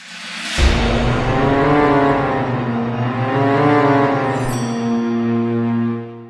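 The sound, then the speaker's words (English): A heavy triple-decker bus engine roars to life and revs hard, its deep throbbing tone rising and falling as it speeds off, loud, with no one talking. “Teach us what we need to know about the Night Bus.”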